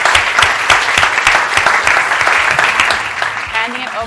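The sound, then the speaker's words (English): A crowd applauds a group of panelists steadily, a dense wash of many hands clapping that stays loud throughout and tapers only slightly at the end, with faint voices mixed in. “Round of applause for our great group panelists.”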